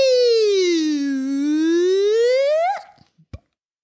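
A single loud siren wail dips low and then swoops back up over about three seconds, stopping abruptly and followed by a few faint clicks and a soft pop.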